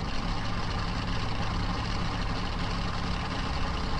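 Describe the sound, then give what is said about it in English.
Steady low rumble of several car engines idling together in stalled traffic, with all lanes backed up to a bridge high above the Susquehanna River, a constant, even drone with no pauses and no voices. “It doesn't take long to regret my decision to rent a car and drive home. All lanes to the Tidings Bridge are backed up.”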